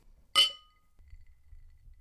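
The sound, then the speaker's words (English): A single bright clink of glasses touching in a toast with peanut butter and jelly martini cocktails, crisp, with a short ringing tail that fades within a moment, followed by faint low rumbling background. “Cheers, Mom. Cheers.”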